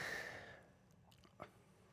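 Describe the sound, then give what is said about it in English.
A soft slurp of someone sipping a martini cocktail, followed by faint wet mouth clicks and a small swallow, with otherwise quiet surroundings. “Let me have another sip.”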